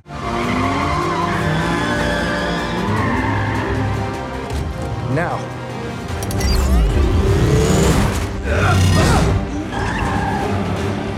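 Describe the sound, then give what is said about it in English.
Cars being dragged around in a film's car sequence, tires skidding and squealing over a steady engine roar, growing louder with sharp screeches and grinding bursts toward the end, intense with no talking. “but then when we get later on in the car sequence, we're talking about dragging cars around.”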